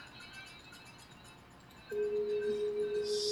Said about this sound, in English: There we go. It takes off, making that sound of the bells.